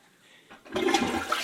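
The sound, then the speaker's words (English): A toilet flushes with a sudden loud rush of water that starts after a quiet moment and keeps churning steadily, with no voices. “Insert sound of toilet flushing now.”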